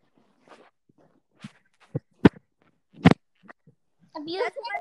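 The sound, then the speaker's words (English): Several heavy, uneven thuds of stomping footsteps from someone walking outside a room, fairly distinct and spaced irregularly, before a child starts talking at the end. “I think somebody's walking outside of my room if you hear a stomping sound.”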